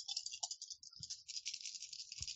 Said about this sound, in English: Oops. And then I'm gonna roll my dice off the table.